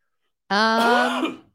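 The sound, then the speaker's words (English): A single loud cough right into the microphone, a rough voiced burst lasting about a second before trailing off, with no talking around it. “The best part is he figured if I just switched the camera, you would not notice that he coughed, but then he coughed directly into the microphone.”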